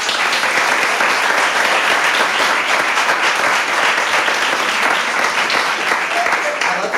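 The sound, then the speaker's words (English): Steady, dense audience applause with many hands clapping at once, loud and sustained for several seconds without a break, forming a bright crackling wash of sound. “Applauded on, I'm not a lesbian.”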